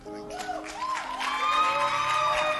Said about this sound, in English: So that's what you guys look for them to clap for you. So you stood here until they clap for you. Oh, yeah, they have clapped for you. They have clapped for you.